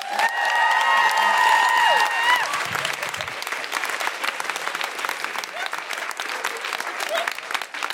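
An audience bursts into dense, steady clapping, with loud high whoops and cheers riding over it for the first couple of seconds before the applause carries on a little softer.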